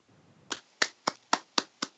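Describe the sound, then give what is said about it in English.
A person claps six sharp hand claps in a steady, even rhythm, fairly loud, each a crisp slap with a short decay, after a brief quiet lead-in. “I'm clapping right now.”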